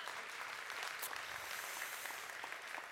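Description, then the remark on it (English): A crowd applauds the speaker for being a new American citizen, the day before Veterans Day, a dense wash of many hands clapping at an even, sustained loudness for the full few seconds with no voices standing out. “And only in America do you get applauded for being an American.”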